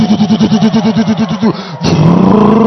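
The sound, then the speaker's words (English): A car engine putters in quick, rhythmic pulses, cuts out for a moment, then returns as a steadier, louder revving drone as it pulls away, with no talking. “Some of you on your father's car is moving.”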